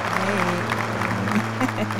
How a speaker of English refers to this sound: Don't hold your applause. Don't hold your applause.